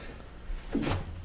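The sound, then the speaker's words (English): A single short sneeze bursts out, a brief voiced catch followed by a breathy, hissing release, fairly soft, with no talking around it. “Bless you. Thank you.”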